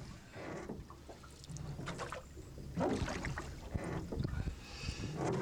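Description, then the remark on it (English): Oars dip and pull through water in a steady rhythm, each stroke bringing a splashy swish and trickle, with a soft wash of wind and lapping water underneath and no talking. “The boat seems like it's going to start to come unhinged, and then this delay sound gets really, really loud, and probably by the time you can't take it anymore, it's done, and we're just back to rowing in the water.”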